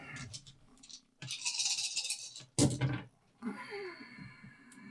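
Two dice rattle in a hand for a second or so, then clatter sharply onto a hard surface and skitter to a stop, followed by a softer scattering clatter.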